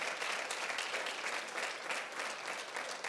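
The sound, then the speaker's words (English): Steady, loud applause from a crowd, many hands clapping densely and continuously with no pause or spoken voices over it. “One more time, give him a round of applause.”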